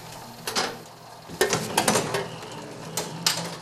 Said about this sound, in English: the paper then is rolled and pressed onto the plate